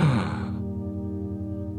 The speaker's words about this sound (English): Suddenly, all of the different fruits and vegetables gasp.